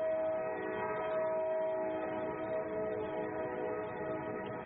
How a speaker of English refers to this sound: There it is, the train. Oh, man. Yeah, so it's a Steamboat train.